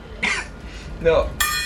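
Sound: coughing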